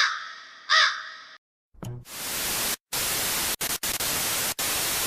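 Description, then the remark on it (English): A crow gives a harsh, raspy caw, then the sound cuts to loud, steady static hiss broken by a few abrupt silent dropouts. “Ah, crows, the right.”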